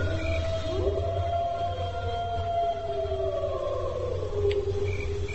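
A long wolf howl sound effect played from a button, with sustained, slowly gliding tones that rise and fall over a low steady hum. It's fairly loud and continuous, and no one speaks.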